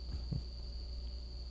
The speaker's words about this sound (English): Goddamn, that cricket's still going.